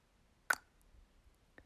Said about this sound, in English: We'll move our attention to our mouths, making a soft cluck sound now. Some of us will do this by taking the tongue to the top of the mouth and letting it lower to the bottom of the mouth, making a small little ping of joy.